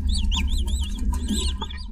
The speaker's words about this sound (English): But the real answer involves chirps. Every naked mole rat colony has its own highly specific chirp. Listen to these two. The audio is rough, but hopefully you can tell the difference. Here's one.